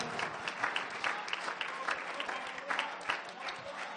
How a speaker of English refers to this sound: Oh, if you believe it's going to be all right, you ought to clap your hands and praise God.